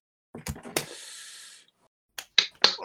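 A handful of sharp, scattered claps in two short bursts, separated by a brief steady hiss, with no talking. It's thin and sparse, not a full crowd's applause.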